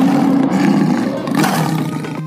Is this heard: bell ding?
no